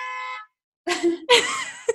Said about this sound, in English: Can you hear that? Yeah, someone honking wildly in the background.